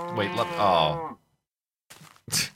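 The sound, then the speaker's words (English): A Minecraft Beta 173 sheep lets out a single wavering bleat lasting about a second as the player punches it instead of shearing it, followed after a pause by two short, noisy bursts like hits as the wolf Wolfie kills it. No one speaks. “I was gonna try to shear that sheep, but instead I punched it, and then Wolfie annihilated it.”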